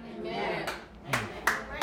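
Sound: half-hearted audience clapping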